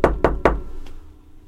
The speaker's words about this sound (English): So I'm going to go ahead and knock on your door.